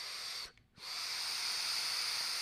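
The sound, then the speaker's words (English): Steady, breathy airflow hiss of a draw through a Dog RTA atomizer on a Pug mod, airflow set to two holes, briefly cutting out for a moment before resuming as a long, even rushing sound. No one speaks. “I can't figure out how I like the airflow. Full open is a bit too open, and two holes.”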